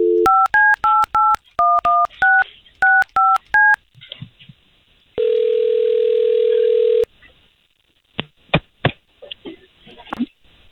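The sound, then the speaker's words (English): A quick string of touch-tone beeps as radio station staff dial a woman's phone number, then a single steady ringing tone on the line, followed by a few faint clicks. No voices are heard. “We'll call her and then we're going to talk to her first.”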